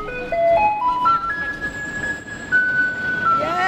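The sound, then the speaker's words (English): A school-bus-yellow garbage truck, with a white recycling truck, arrives where neighbors wait with blue garbage bags. It plays its loud electronic jingle, a simple melody stepping upward note by note, over a steady rumble of street noise. No one speaks. “There was this mad dash of people swarming to the school bus yellow garbage truck and the white recycling truck.”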